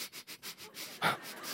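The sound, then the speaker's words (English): A person imitates the deep, heavy breathing and sniffing heard right by their head while in bed in a small tent: a quick series of short, rhythmic sniffs, then a heavier, louder breath and a drawn-out exhale, breathy, with no talking. “Like deep, heavy breathing and this sniffing right by my head.”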